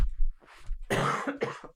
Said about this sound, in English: He did walk into the studio coughing a bunch today, too.